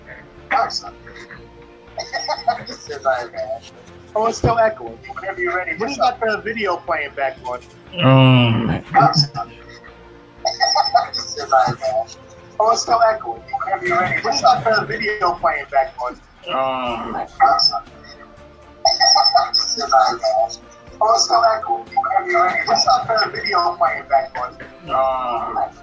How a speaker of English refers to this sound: Oh, it's still echoing. Yeah, what do you got the video playing back on?